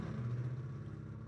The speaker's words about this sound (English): Is it like, too cold for motorcycles? It's not a motorcycle. It's a truck.